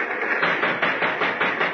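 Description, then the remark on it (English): A rapid, steady series of about eight sharp knocks on the door of a train's mail car, evenly spaced and fairly loud, with no voices. “Now, knock and yell for the guards to open the door to the mail car.”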